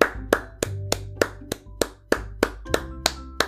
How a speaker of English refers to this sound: That was me applauding. I do. I want to applaud you today in all seriousness